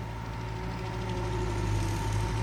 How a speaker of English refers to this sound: Oh, hang on, I hear a tractor. Oh, that'll be Chicken returning with the trees.